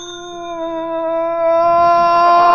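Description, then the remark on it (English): A doorbell at Gargoyle Castle rings as one long, steady buzzing tone that holds its pitch for a few seconds and grows slightly louder toward the end. Nobody speaks. “Okay, ring the bell”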